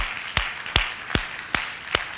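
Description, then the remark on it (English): A group claps together in a steady beat, five sharp, even claps about half a second apart, ringing out over a low hum of room noise with no one talking. “Go ahead and clap.”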